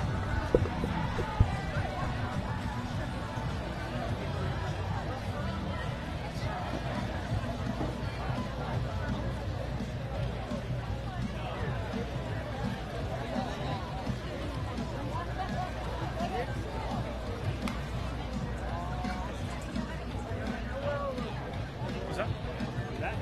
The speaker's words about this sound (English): There's no trouble here. Yeah, they're shutting us down for the night now. They're going to have us staying down here with traffic again. I think it's just more crowd than traffic.